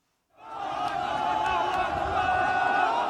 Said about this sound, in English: A huge crowd chants, "Allahu Akbar, God is great."